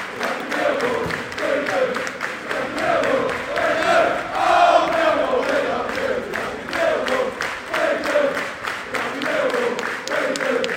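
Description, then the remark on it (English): About 1,500 Millwall football supporters at Hillsborough roar and chant in unison after a 4-0 win, a dense, sustained wall of voices with rhythmic rising swells and scattered claps running through the whole stretch. “1,500 Millwall fans going to be happy going back down the M1 or on the train today.”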